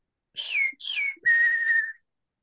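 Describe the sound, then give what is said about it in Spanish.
A person whistles a three-note birdlike phrase imitating the song of a small bird from Tumbaco, a region in the sierra: two short high notes gliding downward, then a longer steady tone, clear and fairly loud with no talking. “Él vivió un tiempo en Tumbaco, que es una región acá en la sierra, y había un pajarito en ese sector que canta.”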